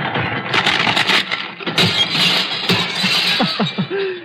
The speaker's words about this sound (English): I take a Christmas tree and I grind it up.